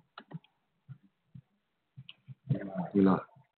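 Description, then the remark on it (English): A handful of sharp clicks spaced irregularly as a microphone button is pressed repeatedly while the mic still shows red, followed by a brief louder burst of voice-like noise near the end. “Clicking the mic because it's still on red.”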